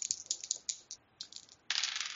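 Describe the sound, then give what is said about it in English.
A quick burst of hard clicks and clatters as dice are re-rolled across a surface, several sharp taps in a row ending in a denser rattle, fairly quiet with no voices. “Well, it's not perils, but I'm going to use a fate point to re-roll it, so I might hit.”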